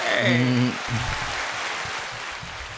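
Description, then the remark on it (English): A brief voice gives way to a steady wash of dense clapping that carries on evenly for a couple of seconds, fairly loud. “Big claps.”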